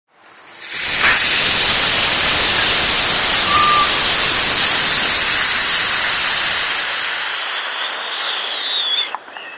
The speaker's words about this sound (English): Just spray it on your pony. Wait 5 minutes, then hose it off.